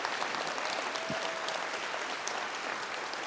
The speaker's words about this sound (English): And give him a hand clap if he's watching, so he knows we love him.